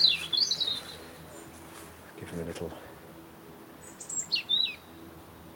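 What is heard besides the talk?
robin singing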